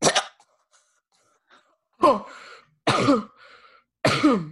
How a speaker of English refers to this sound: Oh, I had a coughing fit there